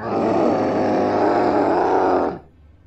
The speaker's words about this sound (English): we heard a very loud, ear-piercing scream.